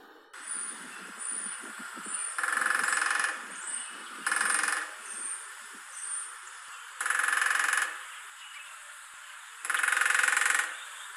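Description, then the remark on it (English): A flicker woodpecker drums on a metal air conditioner, several rapid, rattling rolls a second or so long with a bright, tinny metallic ring, separated by quieter pauses and softer tapping. “That was the melodious sound of a flicker banging away on an air conditioning unit.”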